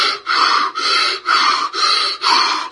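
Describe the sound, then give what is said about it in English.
A voice imitates the loud, labored breathing of a man in a coma: about five heavy, rasping breaths in a steady rhythm, with no talking. “And he was huffing and puffing. He was totally in a coma. And he was breathing in real loud and breathing out.”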